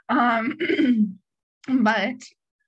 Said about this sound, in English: I didn't mean to clear my throat on you guys.